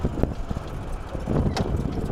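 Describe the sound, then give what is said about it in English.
Heavy wind buffets the microphone on a golf course in a constant low rumble, with gusty swells and brief thumps rising and falling across the whole stretch. No voices are heard. “Like I knew that going, oh, that's so windy. I'm so sorry.”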